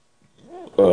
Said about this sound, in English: A little belching? Hmm? A little belching? I wanted to, I couldn't.